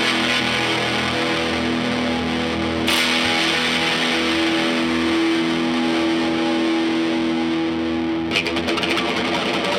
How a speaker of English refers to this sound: That Dirt, yeah, is a dual fusion overdrive fuzz pedal from Dirty Visions FX out of Tacoma, Washington. Tacoma, Washington. That thing's got some dirt. You've got it pretty dimed, though.